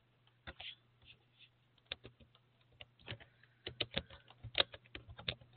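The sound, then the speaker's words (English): Typing on a computer keyboard: bursts of sharp, irregular key clicks that start sparse and grow quicker and louder toward the end, over a steady low electrical hum. “y'all forgive me, I'm typing this up right now as I speak.”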